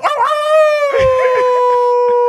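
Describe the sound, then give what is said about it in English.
A person howls like a wolf, one long sustained rising-then-steady howl held loud, with some overlapping chatter and laughter underneath. “What if I'm a wolf?”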